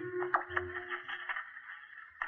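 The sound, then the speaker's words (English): Steady, crackling radio static hisses on its own with no station coming through, a faint low hum underneath and a few brief pops along the way. “Can hear static, but none of the stations are on now.”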